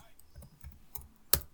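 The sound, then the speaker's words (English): Dice rattle and tumble across a surface, a few light clicks building to one sharp clack as they land, with faint voices murmuring in the background. “Let's roll the dice.”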